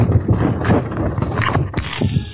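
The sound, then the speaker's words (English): Hooves of a ridden horse clip-clop in a steady, uneven rhythm, loud and continuous against a rumbling outdoor background, with one sharper knock partway through, in an Ashtabula Police encounter. “Stop your horse. Stop your horse.”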